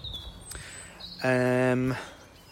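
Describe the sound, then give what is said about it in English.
Thin, high bird whistles and chirps sound faintly in the open air in a village in Cambridgeshire, then a loud, steady, low droning tone swells in for under a second and drowns them out. “I'm enjoying the quiet and the tranquility and the bird song, but there is, you'll probably hear, there's also like the background noise of a building site.”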